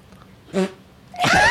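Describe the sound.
Someone blows a wet, buzzy raspberry with their mouth, like a fart noise: a short sputter, then a louder, longer blast, with no talking.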